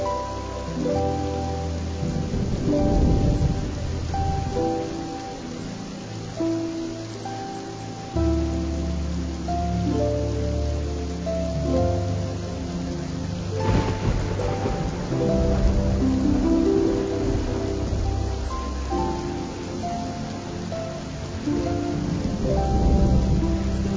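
Steady rain falls, pattering continuously, while low thunder rolls and rumbles, swelling in a few long waves. No one speaks.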